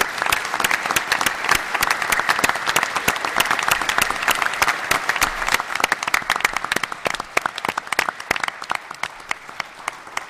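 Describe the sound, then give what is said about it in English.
An audience at an energy efficiency conference applauds for Art steadily for about ten seconds, many hands clapping in a dense, even patter with sharp crisp claps throughout and no voices on top. “I just don't think we can go too much farther without a round of applause for Art.”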